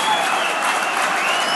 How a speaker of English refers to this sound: They listen to that round of applause.